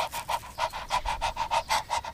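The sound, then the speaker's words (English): A dog named Pyla pants quickly and steadily while lying down, about nine breathy bursts in a regular rhythm, fairly clear, with no talking over it. “Pyla lay down panting.”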